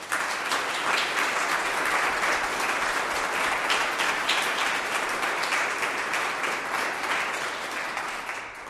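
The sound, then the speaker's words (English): An audience breaks into sustained applause for children celebrating their First Holy Communion Day, many hands clapping in a dense, steady wash that holds at an even level for several seconds before easing slightly at the end. “We're going to give you a big round of applause.”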